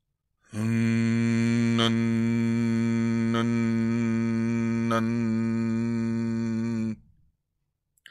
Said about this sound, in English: I will play you that and we will see if we can figure out what these monks are thinking when they're kneeling and humming for hours a day. Here is the one of the monks just humming. And I'll play that for you right now.